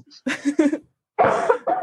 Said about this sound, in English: you really have to stop coughing. Oh my goodness. It's not something I can control.